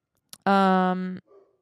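One loud, drawn-out dog bark lasting under a second with a steady tone, followed by a brief faint rustle. The dog is named Frank.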